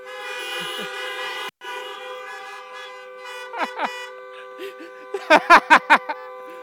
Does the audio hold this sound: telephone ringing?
no